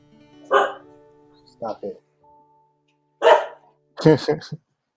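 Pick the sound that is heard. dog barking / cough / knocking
dog barking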